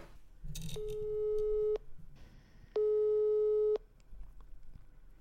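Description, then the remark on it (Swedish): A telephone busy signal, heard while calling Annika Norman, who is not answering, sounds twice, each steady tone lasting about a second with a pause between, clear and fairly loud over faint background noise. “Okej, Annika Norman svarar inte. Hon är upptagen.”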